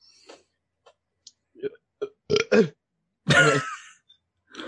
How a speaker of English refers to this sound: There was a nice burp.